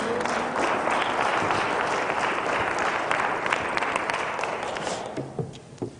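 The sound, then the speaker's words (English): An audience claps together in a steady, loud wash of overlapping hand claps that holds for several seconds, then thins out into a few scattered claps as it fades. “You can clap. That's fine.”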